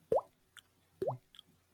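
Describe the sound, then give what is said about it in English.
Two hollow, rising plops made by a person's mouth imitating water drops, about a second apart, each followed by a faint click. Fairly quiet, with no talking over them. “I think I can, I don't know if I can do it here, but I can pretend water drops. Really? With my mouth.”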